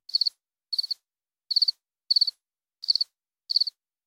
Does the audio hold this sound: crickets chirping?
yes